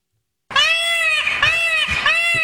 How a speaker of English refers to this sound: These are the real peacocks I'm playing now. I know. So they like the peacocks. They like the look of the peacocks, but there's just too many, and now they're a public nuisance.